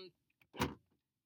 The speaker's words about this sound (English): That's who just opened the door, because I'm sitting in his car doing this.